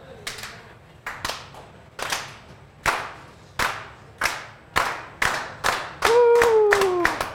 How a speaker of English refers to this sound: Could you slow clap again?